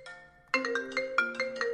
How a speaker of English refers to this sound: Ah! Sorry, my phone rang.